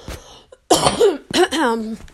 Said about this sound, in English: Excuse me. It's like when I know I'm about to record, my throat gets all itchy, but I can go a full work day and not even cough once. Okay, maybe a couple times, but not like when I had to take orders on the headset.